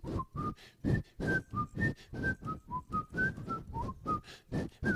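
Someone whistles the bouncy melody of a TV theme song, clear, with short rhythmic notes rising and falling over a steady, thumping beat.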